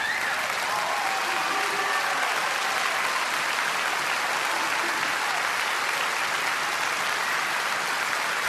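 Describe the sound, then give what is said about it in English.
A church audience applauds God during worship, a dense, even wash of many hands clapping that holds at a strong, constant level for several seconds with no voices standing out. “He demands and deserves our greatest applause.”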